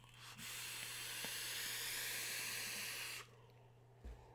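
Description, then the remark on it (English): A single long, steady breathy hiss of vaping lasts about three seconds, fairly loud, then cuts off abruptly, leaving a faint low electrical hum and a brief soft knock. “You want me to vape this? Just for you? All right, here we go.”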